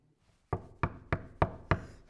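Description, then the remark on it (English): Five firm knocks on a door in a steady, evenly spaced rhythm, fairly loud, with a brief quiet moment before the first rap and no voices. “And even though God may seem like far away, boy, you're knocking on the door.”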